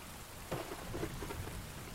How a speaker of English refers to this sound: Rain, rain, rain. You don't remember the last time you're dry, and the chill inside you freezes your soul.